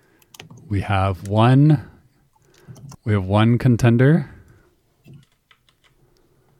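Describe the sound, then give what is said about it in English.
Quick, irregular clicks of two contestants typing answers on computer keyboards, continuing between and beneath two short bursts of someone talking, then trailing on alone as scattered keystrokes. “Type, type, type. They're both typing.”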